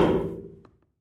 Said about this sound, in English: If you're wondering what that loud thud was, it was a bird flying into the sliding glass door window. And I got up and checked it out. The bird's okay. It was a light smacking into the window, and then it flew off.